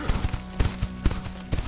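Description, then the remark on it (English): Horse hooves clip-clop in a quick, steady rhythm, a run of sharp knocks as a Shoshone rider spurs the horse and rides off, moderately loud over a faint steady background. “They shouted the word to the rider, but he spurred the horse and rode off.”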